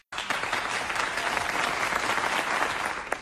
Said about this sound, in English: Give a clap for our winner, everybody.